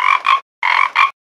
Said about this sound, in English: It's just me and my pet frog, Albert. We blow bubbles in the water, and I give Albert croaking lessons.